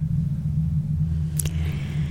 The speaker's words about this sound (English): What is all that sound? I don't know. Sounds like a storm. It does sound like a storm. Oh. Can you hear it?